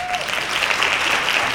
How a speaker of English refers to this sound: Hand claps!